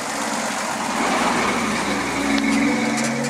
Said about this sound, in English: The game that we're playing is called The Moral of the Game Is, and the vehicle we're going to take to Goofball Island is a milk truck.